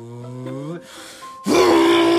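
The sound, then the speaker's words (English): A voice imitates the engine of a car with tinted windows speeding up toward a pedestrian in a crosswalk: a low, buzzing hum climbs in pitch, breaks off briefly, then returns as a loud, strained, sustained roar that holds steady to the end. “And by the time I noticed that there was a car coming while I was in the middle of the crosswalk, I take my headphones off as I speed up and I hear the engine go...”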